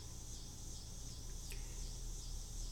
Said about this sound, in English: If it's National Cicada Day or something and they're upset that I'm forgetting it, well, I apologize.